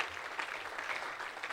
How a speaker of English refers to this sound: I heard of the stories of your sacrificial move, the mission offering. Why don't you guys all give yourselves a round of applause for that? That's amazing stuff.